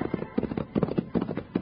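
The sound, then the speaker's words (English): Horses ridden by Bill and Jingles gallop down a trail in pursuit of two bandits, hooves pounding in a quick, steady rhythm of muffled thuds with no voices. “After meeting Doc Crawley and his medicine show wagon, they're pounding on down the trail.”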